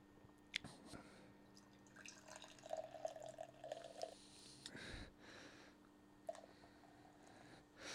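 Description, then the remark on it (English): A few faint drips and small liquid trickles as the last of a drink is emptied from the bottom of a glass, spaced irregularly over a low, steady background hum, with no voices present. “Get the last little bit out of the bottom of the glass there and...”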